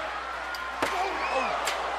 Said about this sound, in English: a chair shot just makes you sick, makes your blood just, your blood curl. That's a steel chair that Mankind is using.